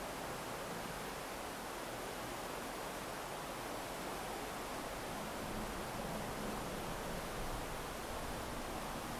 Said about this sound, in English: The sound of the river is everything.